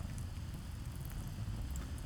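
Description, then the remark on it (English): Steady rain patters against the thick, warped glass of a third-floor stairwell window in the middle of the day, a soft continuous wash of drops with a low, muffled rumble underneath, heard from indoors and fairly quiet throughout. “Not that there was much to see through the rain to begin with.”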